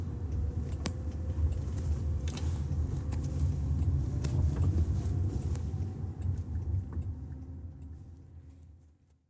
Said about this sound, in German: So, wir sind da wieder im Auto, jetzt fahren wir los, abbiegen und schauen da. Er fährt, überfährt keine Fußgänger.